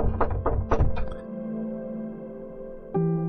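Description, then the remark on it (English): Four firm knocks on the door of a home in quick succession, loud, followed by a lingering low hum and a single soft thud near the end. “There was a knock on the door”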